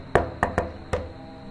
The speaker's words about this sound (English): You knock. Hello? And there's no response. The paint on the door is old and chipping away, and the wood-sided building has, like the fence, seen better days.